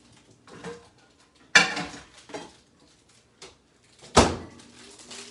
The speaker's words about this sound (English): All right. Let me get a plate. That's what it looks like. Now we're gonna put it in the microwave for 90 seconds. Here we go.